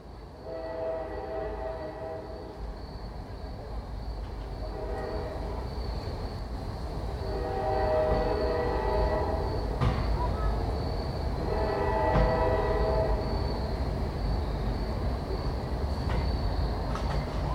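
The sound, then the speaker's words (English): A train rumbles past about a block away on 3rd Street, heard from inside a study, a steady low roar with harmonic horn-like tones swelling in and out, growing slightly louder midway before holding steady. “In my study, I hear trains pass about a block away on 3rd Street.”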